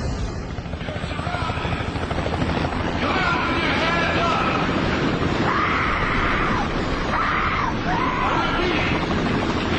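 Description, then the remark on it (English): A helicopter thrums loudly and steadily overhead, its rotor chop filling the scene, while indistinct raised voices and wind-like rushing noise cut in and out above it, as police surround a barn. “Police find Michael's location and surround the barn with armed men, vehicles, and helicopters in the sky.”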